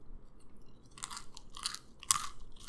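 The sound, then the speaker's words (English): Crisp crunching of plain, pale tan oat cereal rings resembling Cheerios being chewed, several bright bursts in an uneven rhythm with no talking. “And I have already tried them, but I'll give you that crunch sound.”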